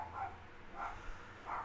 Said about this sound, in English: You hear dogs out there? That's Chicago. Dogs. Fucking dogs. Shut that fucking dog up!